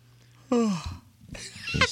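A single vocal yawn from the show's producer, picked up on a microphone thought to be off: a voiced moan that slides downward in pitch, followed by a breathy, airy exhale that swells again at the end. No one speaks.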